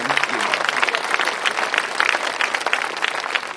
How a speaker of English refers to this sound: Can I get an applaud? Can I get an applaud, please? Thank you much.